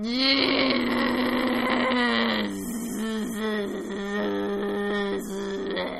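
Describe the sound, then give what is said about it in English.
A voice imitates a crazy buzzing noise that went on through the night: a loud, steady nasal hum for about two seconds, then a wobbling, pulsing buzz that rises and dips in pitch until the end. “like, a crazy buzzing noise”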